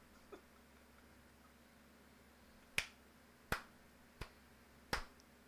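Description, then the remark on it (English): Four slow, evenly spaced sarcastic hand claps ring out sharply in response to a lame joke, each about a beat apart, with nothing else but a low background hum around them. “Slow clap for that guy's lame-ass joke.”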